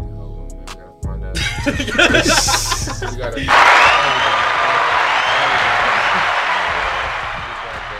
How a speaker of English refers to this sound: Somebody hit the applause button, man.